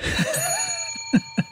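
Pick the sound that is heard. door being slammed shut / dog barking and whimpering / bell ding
bell ding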